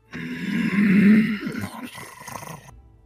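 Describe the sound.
A person vocally imitates the growl of a wolf-sized big cat: one loud, rough, throaty snarl about two and a half seconds long, swelling in the middle, then breaking into ragged rasps before cutting off.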